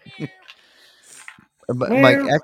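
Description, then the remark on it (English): A man imitates a kitten's meow with faint, thin, high-pitched mews that sound distant, then a louder voice breaks in near the end. “can you act like a man? Not a kitten?”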